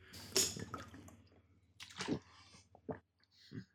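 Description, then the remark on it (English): Wet gulping and sloshing as water spills over a person's shirt and pants while they drink, with a loud splash early on, then a few separate squishy bursts and brief drips against a low hum. “The water. It's all over his shirt.”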